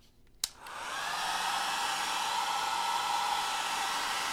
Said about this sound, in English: I made a little bowl out of my tin foil, and I'm just going to blow dry into the tin, and hopefully – this works. So here we go. I'm just going to turn on the blow dryer and we'll go from here.